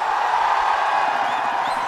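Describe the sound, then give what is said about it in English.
A crowd cheers and applauds for John Norman in a dense, steady roar that holds at a fairly loud level for the whole two seconds, with no single voice standing out. “He deserved that round of applause. Oh, the crowd. What a cheer for him.”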